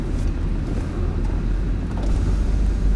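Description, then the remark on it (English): Steady, fairly loud car rumble with road and wind noise while passing a vintage car, a classic Nova from the early 1960s with a custom hood, continuous throughout and with no distinct pass-by swell. No one speaks. “We're passing a very vintage car”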